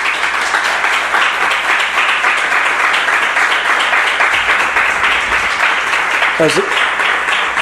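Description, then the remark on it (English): A crowd applauds the cast of a stage production in a steady, dense wash of clapping that holds loud and even for several seconds, with a brief cheer or whoop rising near the end. “Let's give our cast a round of applause, please.”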